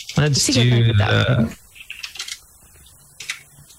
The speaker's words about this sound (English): Why am I typing it out?